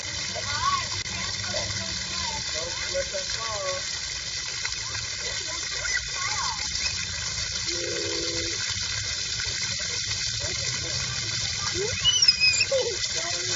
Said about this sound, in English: She was trying to grab in on some water and hold on to it, but man, she just couldn't grasp it.